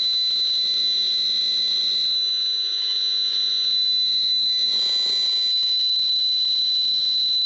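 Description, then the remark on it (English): An EMF meter picking up frequencies from cell phone towers emits a loud, continuous high-pitched screech, a steady piercing whine holding for the whole stretch with a slight warble partway through, and no one talking. “I'm going to turn on one of my meters so you can kind of hear these frequencies.”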